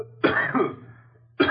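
A double cough rings out close and fairly loud, two quick harsh bursts run together, then after a short pause another cough begins, with no talking.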